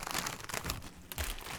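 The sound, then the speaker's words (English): A chip bag crinkles with rapid, crackly rustling, followed by a loud crunch of a chip being bitten, then more crisp crinkling. No one speaks. “Final chip.”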